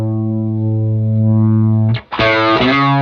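A loud, sustained electric guitar tone rings out, briefly cuts off, then returns thick and gritty with the distortion side of a pedal engaged, the sound turning buzzier and more saturated. No one speaks.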